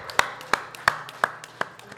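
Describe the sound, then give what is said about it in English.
Five sharp hand claps in a steady, even rhythm, each a crisp snap that fades quickly, over a faint background hum with no talking. “It's a great clap.”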